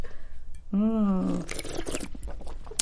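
A brief slurp of an ice-cold cocktail after a toast: a short hummed, satisfied vocal tone gives way to a second or so of wet, noisy sipping bursts, followed by faint shuffling sounds.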